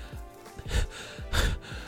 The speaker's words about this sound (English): just in my bed, panting, just scared out of my mind.